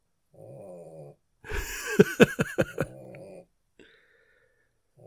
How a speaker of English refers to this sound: Can you hear Teddy snoring?